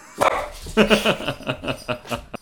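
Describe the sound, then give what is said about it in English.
A dog named Bowie barks and yaps excitedly for kebabs in a quick, insistent string of about eight sharp, mid-pitched barks, fairly loud, with no one talking over it. “Fuck, Bowie really wants that food. He is after the kebabs.”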